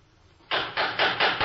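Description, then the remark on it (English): Knocking at a door at night: about five loud, dull knocks in quick, even succession, each one blurring into the next, with no voices. “Someone at the door this time of the night?”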